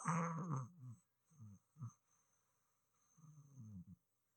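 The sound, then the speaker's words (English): A voice imitates a tiny, kitty-like snore of someone sleeping: a few soft, breathy snorts in an uneven rhythm, a longer puff to start and another near the end, with a faint steady high hiss behind. “Usually she snores like a little kitty snore that will never, ever disturb me in a million years, because it's just like this tiny little kitty little.”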